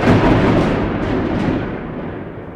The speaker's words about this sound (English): Some said it sounded like a thunderclap. Others said it sounded like a shotgun.